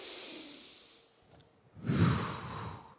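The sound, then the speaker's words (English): A slow breath taken as a rhythmic breathing exercise: a soft airy inhale for about a second, a brief pause, then a fuller, louder exhale with a breathy rush. No talking, just one deep in-and-out breath. “To catch your breath, you must realize breathing is a rhythm. In fact, let's just try it.”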